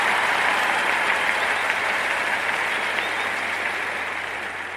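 Steady, dense applause from an audience in Gwinnett County for Mr. and Mrs. Strickland's philanthropy supporting students, a broad wash of many hands clapping at even loudness for several seconds before easing slightly toward the end, with no voices over it.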